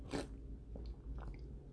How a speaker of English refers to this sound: excuse me for 1 second, take a sip of this delicious water.